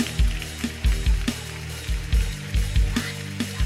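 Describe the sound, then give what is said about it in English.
An audience claps together for 20 seconds in a dense, crackling wash of hands, falling into a steady rhythmic beat over low, pulsing music. “Now, for 20 seconds, clap your hands again and bind arrangements.”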